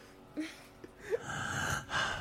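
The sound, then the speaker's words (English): Dramatic, heavy breathing from a man in a played video clip: a sharp gasping inhale followed by long, drawn-out breathy exhales, loud and theatrical, with no talking. “Okay, let me give that a running start and let him do the whole breathing thing without me interrupting it.”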